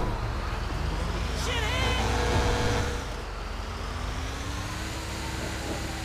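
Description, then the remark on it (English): A truck engine rumbles steadily in a video game as the player takes a trucker's truck, a loud drone that swells for the first few seconds, then settles as a slowly rising engine tone climbs in pitch. “Yo, trucker, get out of the truck.”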